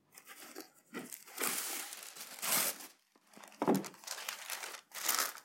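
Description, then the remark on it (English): Wax paper crinkles and rustles in irregular bursts as it is handled and a layered cake is put on it, with brief sharp crackles and a few short pauses, no voices present. “But this is a layered cake, and if you want to make the edges pretty, you put wax paper on the side.”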